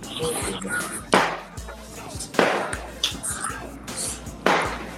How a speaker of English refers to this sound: Can you tell your family not to play the fireworks, please? It's not a trigger noise for us.